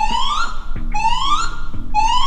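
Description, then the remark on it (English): The fire alarm at Ron Brown school blares in early March after a fire is reported in the building, caused by a gas leak, in loud, repeating rising whoops, each sweep climbing in pitch for about a second before restarting, with a low buzzing tone underneath and no voices. “So it's fitting, in early March, the fire alarm goes off.”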